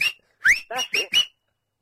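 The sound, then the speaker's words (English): A short series of five sharp whistled notes, fairly loud, with quick rising and warbling pitch sweeps, a dog whistle used for rounding up sheep, followed by silence. “I mean, you know, the dog whistles when they do, like the rounding up of the sheep and all of that malarkey and God knows what else.”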